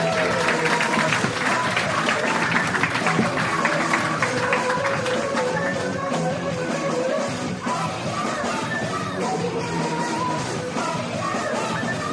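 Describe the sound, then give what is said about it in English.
Steady, dense applause from a large audience for all the guests fills the whole stretch, mixed with cheers and whoops, sustained at a loud, even level without pause. “Open round of applause for all our guests.”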